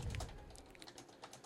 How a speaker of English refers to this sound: Why are you typing so much?